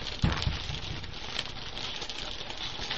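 Dense, continuous crackling of plastic bags being wrapped around bottles, a steady papery rustle with a couple of sharper crinkles near the start and no voices.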